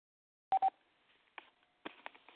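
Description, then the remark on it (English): Two quick touch-tone phone keypad beeps sound in rapid succession, loud, followed by a few faint clicks and soft line noise, with no talking. “if you with that, man, hit *8 on your phone and we'll bring you in.”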